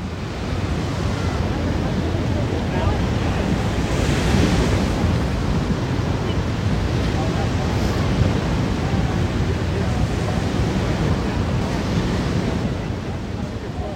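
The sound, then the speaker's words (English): Steady, loud roar of ocean surf with waves washing continuously, mixed with gusty wind rumbling against the microphone; no voices, just the broad, unbroken wash of sea noise throughout. “Enjoy, and cue the ocean.”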